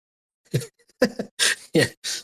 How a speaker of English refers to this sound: Cam or Crypto, take over for a second while I cough here.